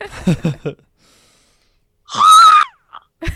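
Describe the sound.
A voice imitates a hawk's call with one loud, high, strained screech lasting about half a second, rising then falling, after a short burst of murmured talk and a pause.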